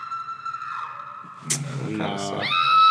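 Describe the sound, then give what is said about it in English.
A female scream sound effect: a woman's high, sustained scream wavers for almost a second, then gives way to a brief voiced burst and a sharp, rising shriek at the end, all fairly loud. “They have a female screen. Can we hear it real quick?”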